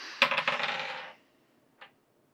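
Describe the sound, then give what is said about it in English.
Dice rolled for an athletics check rattle and clatter across a hard surface in a quick run of bright clicks that fades after about a second, followed by one faint tap. No voices are heard. “All right, go ahead and roll for me an athletics check.”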